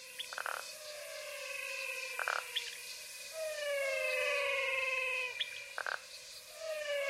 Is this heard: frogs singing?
yes